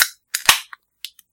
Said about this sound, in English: Cracking open a nice, shitty ass room temperature Busch beer.